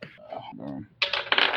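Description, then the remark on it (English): A voice speaks briefly, then about ten dice clatter and tumble across a hard tabletop in two quick, bright rattling bursts, fairly loud, during a tabletop game. “These dice.”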